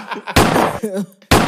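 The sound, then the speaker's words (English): Gunshot sound effects: two loud, sharp blasts with a rough lingering tail, separated by a brief voice-like tonal sweep, the second shot cutting in abruptly at the end. “turn me up on them gunshots.”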